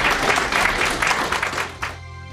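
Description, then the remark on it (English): A crowd applauds a panel with dense, steady clapping that fills most of the moment, then cuts off abruptly as a soft musical tone takes over at the end. “Big round of applause for our panel”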